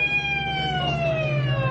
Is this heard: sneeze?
no